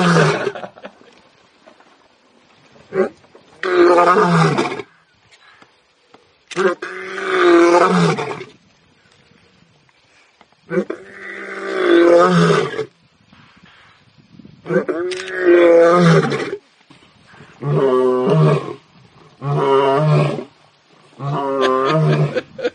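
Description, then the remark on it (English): A lion roars in a series of about seven deep, rumbling, loud bellows, separated by short pauses that grow shorter toward the end. “So I may find a lion and splice.”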